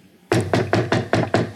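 Six quick knocks on wood in a steady, even rhythm, fairly loud, following a brief moment of quiet, with no voices.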